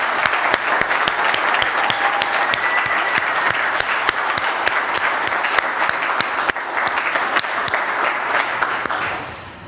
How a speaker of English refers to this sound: And my final thing, let's have a round of applause for the folks who put this event together and for our excellent slide makers.